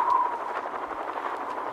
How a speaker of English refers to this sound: Well, that's not the wind. Why, that's the sound of old helicopter blades. Good Lord, those are bear birds.